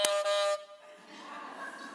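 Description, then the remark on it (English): A quiz buzzer, one of five given to volunteers for a pop quiz, gives one loud, harsh, rasping blast lasting about half a second, then cuts off, leaving a faint murmur of voices behind it. “So I need 5 volunteers, and each volunteer will get their own buzzer.”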